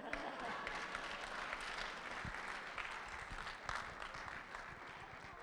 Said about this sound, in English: Normally, when there's a science experiment, there's a little applause.